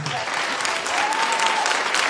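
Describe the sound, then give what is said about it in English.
A crowd claps steadily, a dense, loud wash of applause that holds at an even level throughout, with faint voices mixed in underneath. “She tried to stop the crowd from clapping like, there.”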